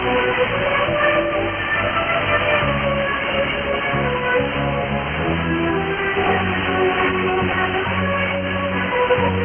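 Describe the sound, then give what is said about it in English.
An AM radio signal received through a synchronous detector: a steady, loud, muffled broadcast with dense sustained tones and buzzy harmonics, the treble cut off, playing continuously with no talking. “This is a rather lousy signal, yet the distortion has been greatly reduced.”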